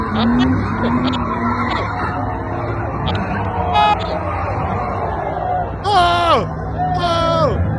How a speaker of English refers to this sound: He just drove into all those people. He's trying to get away and then he hits cars.